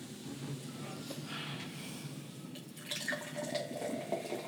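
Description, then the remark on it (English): Black cherry drink pours steadily into a glass, a soft continuous splashing and gurgle that brightens slightly toward the end, with faint room noise underneath. “I'll pour a little bit more in the wine.”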